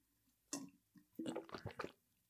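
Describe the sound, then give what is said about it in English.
Someone drinks water from a glass with the head tipped back: a single wet gulp, a short pause, then a quick run of several swallowing, slurping sounds. No one speaks. “Tip your head back. Put that glass up in the air.”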